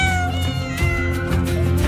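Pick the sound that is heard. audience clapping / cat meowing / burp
cat meowing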